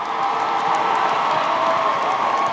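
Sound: audience applause and cheering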